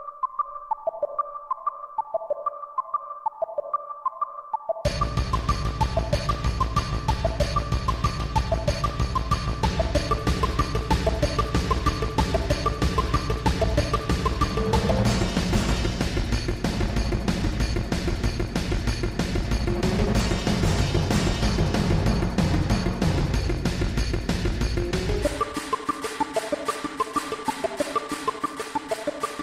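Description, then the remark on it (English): Intense instrumental video game soundtrack music opens with a sparse melodic line, bursts into a loud, dense full arrangement with heavy low end, then thins back to the melody near the end. “Some intense music for an Am I the Asshole episode, and in hindsight, I should have used a theme from Echo the Dolphin or Sonic Adventure 2, because I do consider both of those games to be assholes.”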